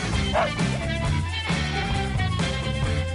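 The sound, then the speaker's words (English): Butch, the host's dog and the show's executive producer, barks several times in short, yappy bursts over a busy, steady music bed, fairly loud, spread unevenly across a few seconds. “the dog behind the man, our executive producer, and everyone's buddy, Butch.”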